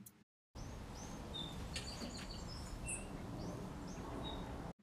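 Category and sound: bird, song sparrow call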